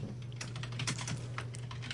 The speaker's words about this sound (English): What are you typing there? You got a resume? You trying to get another job?